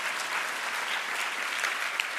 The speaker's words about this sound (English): Isn't that awesome? You can cheer that. You're not sure if you should.